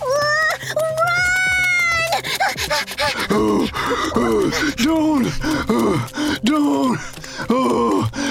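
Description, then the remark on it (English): Rapid, rhythmic voiced panting and grunting from black octopuses giving chase, loud, repeating in short huffing bursts after a brief opening wail-like cry. “The black octopuses panted as they gave chase.”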